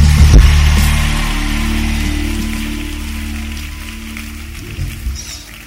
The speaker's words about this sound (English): Come on, clap your hands and shout, yes.